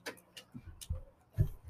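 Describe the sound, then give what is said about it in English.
A quiet clock ticks steadily on its own, alternating sharp high ticks with duller low tocks at an even pace, about four beats in all, with no talking. “I got a clock back in.”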